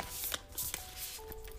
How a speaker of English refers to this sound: Okay, let's see here. Just going to shuffle the cards a little bit, see what the focus is today.